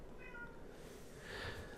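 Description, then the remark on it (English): A cat meows twice in quick succession, a short tonal cry followed by a louder, brighter meow, with some background noise and no talking; the female house cat is agitated, trying to get into a cupboard. “I am going to just scream at these kitties. Well, the kitty.”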